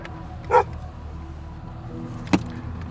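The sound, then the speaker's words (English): A dog barks twice at a compound with a house and outbuildings, a sharp bark near the start and a shorter one about two seconds later, over a low rumble of background noise with no one speaking. “I think he's gonna turn around if he sees his dog barking.”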